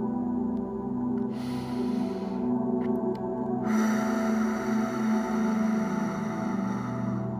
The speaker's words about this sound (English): If you are, breathe in 3 times. Deep, powerful breaths.